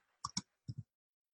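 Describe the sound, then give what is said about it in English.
Computer mouse clicking while entering today's date into an updates field, two quick double-clicks, crisp and fairly loud, with a short pause between the pairs and no voices. “So I start with today's date, which is just as easy as clicking in and clicking the date.”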